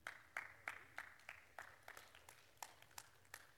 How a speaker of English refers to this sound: I got two of you excited. Two more decided to clap because he wanted to join those two.